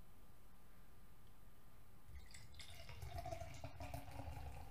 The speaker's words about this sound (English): I'm pouring it up like this because it's a filtered lager beer. Kölsch beer. That's a lager.